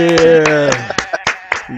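A sustained, tuneful voice or tone fades out, then two show hosts clap with a handful of sharp, irregular claps, applauding briefly and unevenly to welcome their guest.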